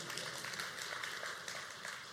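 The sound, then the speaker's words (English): A crowd claps steadily, a dense patter of many hands that stays fairly soft and continuous throughout, with no voices. “You can finish that clap. That was a good one.”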